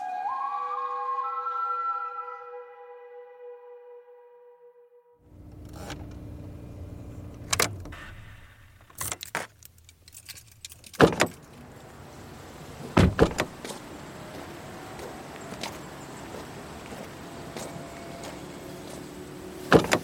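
A chime tone rings at first, then car sounds follow as one person helps another out of the car: a door opening, sharp thumps and clicks, shuffling movement and a door slamming shut, over a low engine or outdoor hum.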